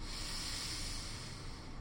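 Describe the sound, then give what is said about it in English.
A single slow, soft inhale during a guided breathing exercise, heard as a steady breathy hiss that lasts nearly two seconds with no one speaking. “Breathing in.”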